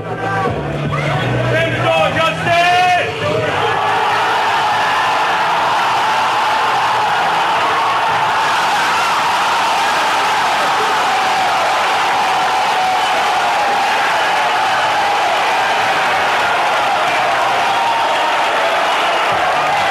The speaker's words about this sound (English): So he, with very precise timing, kind of turns away 18 Chun-Li kicks in a row. Yes. And I don't know much about Street Fighter 3, but based on the crowd's reaction, that has never been done before ever, because they go nuts.